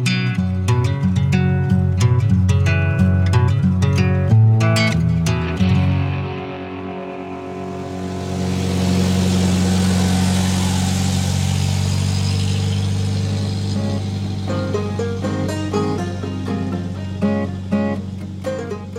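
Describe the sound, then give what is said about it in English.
A deep, steady truck engine rumble runs throughout, with sharp knocking hits early on, then a loud rising roar as the engine revs that swells and gradually settles back toward a low, even idle. “It was the cleanest truck Ethan Barker had ever ridden in. The quietest, too.”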